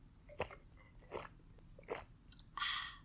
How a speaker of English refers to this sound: Okay, I said a little sip and then I took like 3 gulps. But it is delicious.